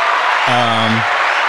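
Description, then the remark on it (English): Steady, dense applause fills the whole moment, a hiss-like wash of many hands clapping, with a brief low voiced cheer rising in the middle before the clapping carries on alone. “Give him a round of applause for that.”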